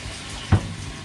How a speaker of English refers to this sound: I need to take off my shirt. I'm washing my hands and my arms. Oh my gosh.